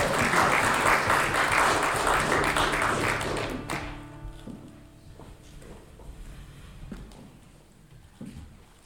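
An audience at a church service claps for a pastor coming up to speak, a dense, steady burst of applause that fades out after a few seconds, leaving scattered shuffles and light taps, quieter and echoing.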